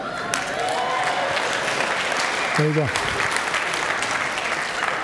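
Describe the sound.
An audience claps steadily throughout, a dense, even wash of applause that holds at the same level for the whole stretch, with a man's voice briefly speaking over it partway through.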